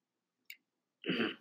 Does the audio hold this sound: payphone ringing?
no